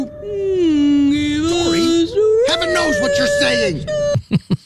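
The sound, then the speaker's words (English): A whale that researchers were communicating with vocalizes: long, moaning tonal calls that slide and bend in pitch for about four seconds, then break into a few short, sharp pulses at the end. “Now, they literally just took Dory and talked to a whale and then said they were talking to him.”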